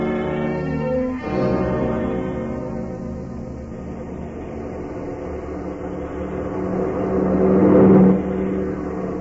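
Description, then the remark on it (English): A car engine hums and revs as the car is swung around a curve in the road, with a steady mid-range drone that swells louder near the end before easing off. No one speaks. “We swing the car around the curve a little further and head it this way.”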